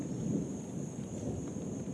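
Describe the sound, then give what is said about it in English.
Steady rain falling outdoors at a lake, a continuous wash of noise with a heavy low rumble like thunder or wind beneath it, fairly quiet and unbroken, with no voices. “I think it's a good time to fish in the rain, because that's when the fish pop out.”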